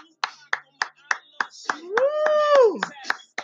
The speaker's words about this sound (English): Hand clap.